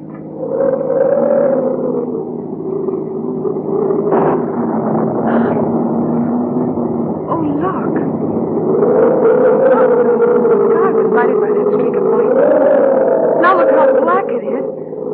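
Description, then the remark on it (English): A loud storm wind roars without pause around a car on a hill road, its howling pitch rising and falling in long, wavering swells, with muffled voices buried beneath the gale. “It'll blow the car off the road and hurl us down the hill.”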